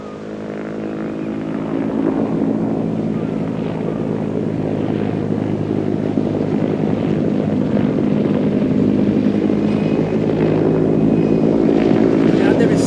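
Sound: helicopter flying overhead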